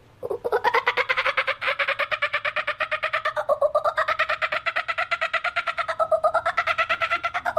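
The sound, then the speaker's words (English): A child's voice imitates a kookaburra's laughing call at a school children's wildlife call imitation event, a loud, rapid run of cackling hoots that rises and falls in pitch and carries on without a break for several seconds. “And I'm going to do a kookaburra today.”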